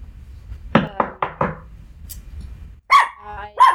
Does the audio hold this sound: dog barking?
yes